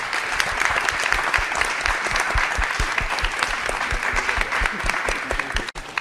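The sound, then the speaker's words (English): Sustained audience applause for the panelists at a panel event, a dense, steady wash of many hands clapping at an even loudness for about six seconds, with a brief dip just before the end. “Yeah, another round of applause for our panelists.”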